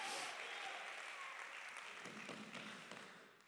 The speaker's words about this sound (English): Clap your hands this morning.